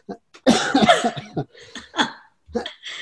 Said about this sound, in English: I'm coughing. Yeah, so hopefully they don't pick that up too much, but every once in a while I have a little cough.